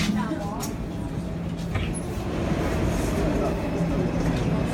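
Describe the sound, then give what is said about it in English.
Steady, loud rumble inside a moving train of the Warsaw subway, with a deep continuous drone and rattling hiss throughout, and faint indistinct chatter mixed into the noise. “And I posted a video from the Warsaw subway system”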